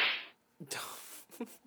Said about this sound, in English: We now have sound Yay! Effects. Like... For example, now I can virtually slap